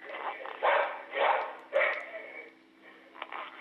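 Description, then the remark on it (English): A border collie–corgi mix barks several times in quick, uneven bursts, the sound thin and band-limited as if coming through a phone line, with quieter yips trailing off at the end. “He is a Borgie, a border collar corgi, and anything that moves, he barks.”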